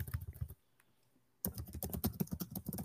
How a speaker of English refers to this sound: He is typing so aggressively. I love it.